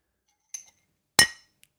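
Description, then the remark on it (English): A ceramic mug clinks sharply against something hard in a toast, a light tap followed by a louder ringing knock, then a faint tick, with no talking. “Virtual cheers. Clink. Wait, let me. Oh, nice. Nice. Sound. Actually, I've got a mug here. Ready?”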